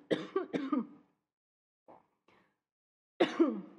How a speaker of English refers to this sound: Sorry, I'm going to have to cough.